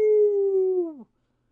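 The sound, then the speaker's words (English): A corgi named Pepper, excited to watch the Puppy Bowl, lets out a single excited howl lasting about a second. It holds a steady, clear pitch, then slides downward and cuts off, fairly loud with no other sounds. “Yeah, even my dog, Pepper the Corgi, was so excited to watch the Puppy Bowl today.”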